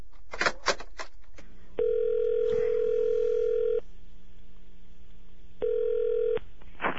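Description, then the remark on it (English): A telephone extension being picked up and dialed: a few sharp clicks and rattles, then two steady, buzzy electronic tones, one long and one shorter, separated by a quiet pause. No one speaks. “So, you want to call him? Yes. Call him up. All right, pick up the extension.”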